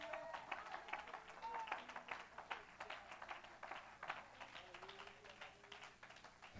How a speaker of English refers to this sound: Come on, if you've got faith to believe that, why don't you clap your hands to Jesus right now?